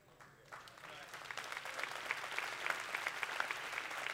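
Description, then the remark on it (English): A crowd breaks into sustained applause that swells within the first half second and holds steady and dense, with scattered cheers or calls rising above the clapping. “I'm gonna make everybody clap for that.”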